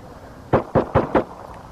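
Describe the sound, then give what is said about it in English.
Four sharp rifle shots in quick, evenly spaced succession, each a sudden percussive crack over a low background hiss, with no voices; a man firing a rifle at a police officer, heard in a played recording. “Now the guy shooting at the police officer with his rifle.”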